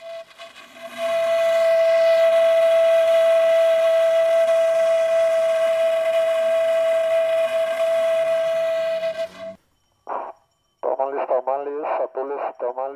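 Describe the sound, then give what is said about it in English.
A camotero's (sweet potato vendor's) steam cart whistle shrieks in one long, steady, piercing tone for about eight seconds, then cuts off abruptly before a person starts speaking. The cart is a steel drum rolled through city streets at night, baking sweet potatoes on embers that push hot air up a pipe. “There's the camotero who rolls a steel drum down the streets of the city at night, baking sweet potatoes on embers that push hot air up a pipe.”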